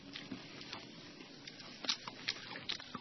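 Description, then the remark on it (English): Crunching of someone eating crispy bacon for lunch, a quick run of sharp, crackly bites over about three seconds with no talking. “Can you hear how crispy it is? Crunchy?”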